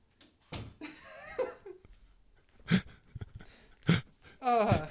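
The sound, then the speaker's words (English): A door is pushed shut with a couple of dull knocks and thumps, amid rustling and bursts of breathy laughter. “Did you shut the door because you're laughing at me so hard?”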